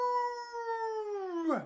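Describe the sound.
A single long dog howl, a steady mid-pitched tone held for over a second before it drops and breaks off at the end, heard alone.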